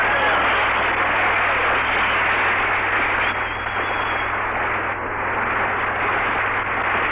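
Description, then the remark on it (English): A studio audience applauds steadily for several seconds, a dense, even wash of many hands clapping at once that stays loud throughout, with a low hum underneath and no voices. “Clap them hands. Stir up some air.”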